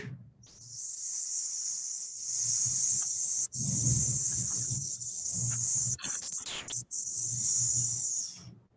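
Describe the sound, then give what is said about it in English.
A long, steady hissing "sss" sound made with the tip of the tongue during a Kundalini breathing exercise, sustained for several seconds with only brief breaks. It is fairly loud, with faint low murmuring underneath. “And I'll do that with the tip of the tongue, the S.”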